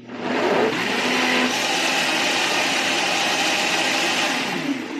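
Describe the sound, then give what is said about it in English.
A blender runs steadily at full power making a whey protein smoothie with blueberries, whole milk and banana, a loud, dense motor whir with a churning roar that holds constant for several seconds, with a slight pitch dip near the start and end. “And right now I'm making myself a whey protein smoothie with blueberries, whole milk, and a little bit of banana I had left in the fridge.”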